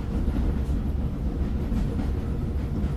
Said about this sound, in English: a combination of different train sounds, which when layered the right way, can block out other noises surrounding you and actually help you to sleep better.